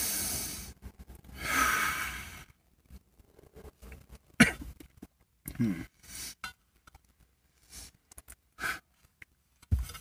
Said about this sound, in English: Oh, yeah, we got to do our breathing technique really quick to use up all the fucking available THC in the vapor. You ever done that, like, Wim Hof shit?